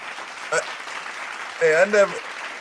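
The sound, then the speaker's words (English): A steady patter of hand clapping in praise of a finger trick just performed runs throughout, with a short vocal whoop partway in and a longer voiced cheer rising over the claps near the end. “Let me get a little hand clap.”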